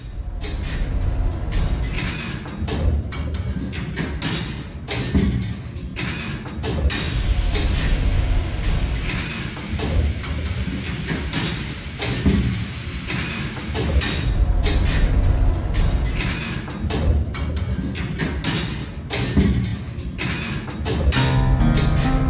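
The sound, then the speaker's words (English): Elsker's great steam pumping engine, which pumped water from 1795 to 1926, runs steadily with rhythmic mechanical clanks and creaks over a low rumble, and a hissing wash of steam rises in the middle stretch. No one speaks. “Listen out for the noises of the engine, the steam, and all the different layers of stories and sounds, and imagine what it would have been like working alongside Elsker's great engine hundreds of years ago.”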